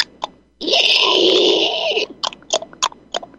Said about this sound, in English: I had this running bit of the guys in the star chamber. You know, you hear the door unlatch.